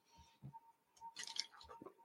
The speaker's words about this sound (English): And look, I'm drinking my water. Hold on.